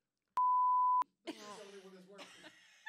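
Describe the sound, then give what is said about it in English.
A single sustained electronic beep, a steady pure tone lasting about half a second, followed by a voice making a groaning, drawn-out vocal sound. “He's used to beeping.”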